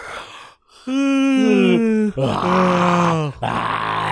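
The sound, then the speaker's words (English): A person imitates yawning out loud, making a few drawn-out, groaning vocal yawns back to back. Each one is loud, with a long sliding tone and a breathy finish. “Yawning.”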